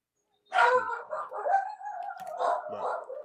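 Two small dogs yapping in a shrill, overlapping string of barks and whines that runs for about three seconds, fairly loud, with no one talking.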